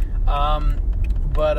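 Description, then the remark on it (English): Steady low engine and road rumble fills the inside of a car being driven by someone just off work, with brief snatches of a voice rising over the drone. “And just got off work here, and I'm in the car. I've been doing these in my car, so I hope it doesn't sound too bad.”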